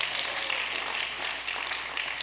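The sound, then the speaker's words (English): A crowd claps steadily, a dense wash of overlapping hand claps holding an even level throughout with no pauses and no voices. “If you're going to clap, don't give me a petty clap.”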